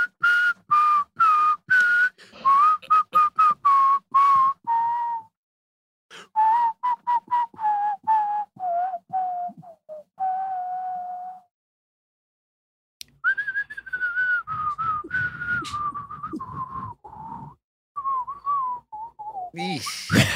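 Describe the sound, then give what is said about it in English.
Someone whistles a wavering tune, clear and fairly loud, in three phrases separated by short pauses, with no talking. “Did you want to do like a whistle thing?”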